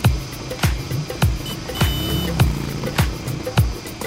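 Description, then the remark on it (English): A three-wheeled, open-topped auto rickshaw with no door putters through busy traffic with a steady, rhythmic thumping about every half second, a brief high horn-like beep sounding midway through, amid the hum of traffic. “Bumping around in an auto rickshaw.”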